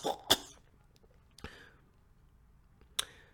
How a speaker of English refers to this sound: One small step for a cosmonaut, one giant leap for mankind, one small cough for mankind.